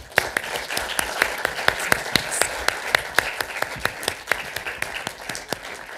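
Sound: big round of applause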